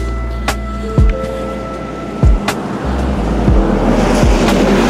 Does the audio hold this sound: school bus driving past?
yes